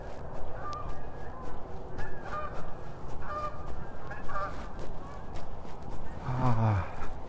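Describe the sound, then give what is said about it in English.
A flock of migrating geese flying high over a residential subdivision honks repeatedly, a steady chorus of overlapping calls from several separate formations, with one louder honk near the end. “I've seen at least 3 or 4, now 5, 6, separate formations of geese making their migration over the subdivision.”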